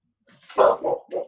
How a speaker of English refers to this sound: Dogs are barking now, mate.